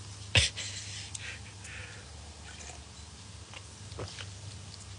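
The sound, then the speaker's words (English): A single sharp, abrupt hiccup pops out near the start, followed by quiet breathy sounds and a faint second catch later over a steady low hum. “I think three quick sips of water should cure me of these hiccups.”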